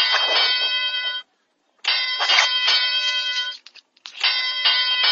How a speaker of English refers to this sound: Hold on. Let me get the bell ready. The bell toll, please.